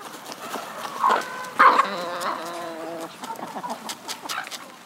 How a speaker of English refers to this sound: Are those dogs to... Yeah, so those are some of our pups, and they're being trained to do livestock guarding because our animals are out all guarding.